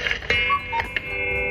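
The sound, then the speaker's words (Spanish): A cuckoo clock's two-note call, a higher note dropping to a lower one, with a few sharp ticking clicks around it and a steady tonal hum underneath. “Así, literal, como el pajarito que sale de los relojes que hace.”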